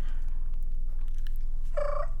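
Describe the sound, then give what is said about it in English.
A turkey call played from a phone app: a brief, bright, tonal yelp with stacked harmonics bursts out near the end, following a low rumbling background with faint scattered clicks. “So I downloaded turkey calls.”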